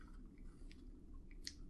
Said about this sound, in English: You can hear me slurp. It feels cold. I grabbed a chocolate milk off of Lido at breakfast, partly because I do get acid reflux. And if I run out of Tums, mm-hmm. Chocolate milk can help. So I'm going to give this a sip.